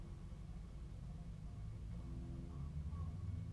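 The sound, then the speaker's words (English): A bus passes outside a house, where a bus stop is directly outside, with a steady low engine rumble that swells and grows throatier toward the end, heard alone without any talking. “I'm going to start over because that bus was very loud on my end.”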